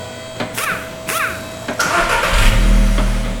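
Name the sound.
car engine starting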